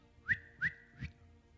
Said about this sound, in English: You know, I don't know how to do that, by the way. I don't know how to you see how people do? I don't know how to do it. Can someone do that? Yeah, like that one. Who's done that? That whistle. Do it again.